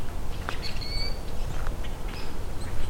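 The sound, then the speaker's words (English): A male Rusty Blackbird sings a few thin, squeaky whistles and creaky chirps, scattered over a steady low outdoor rumble, with no one talking. “Okay, so I'm coming up on Rusty Blackbird.”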